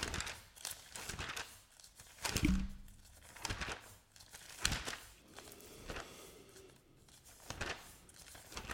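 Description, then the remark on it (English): Thin Bible pages rustle and crinkle as they are flipped in quick, uneven bursts to the book of Jeremiah, with soft flutters and one sharper rip-like swish near the middle. Nobody speaks. “There's something about the ruffle of the Bible pages turning.”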